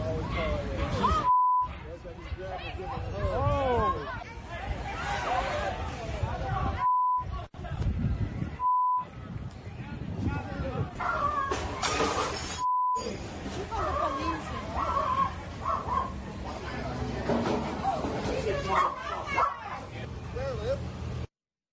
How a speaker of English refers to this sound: You hear people stating, call the police. You hear the dog upset barking.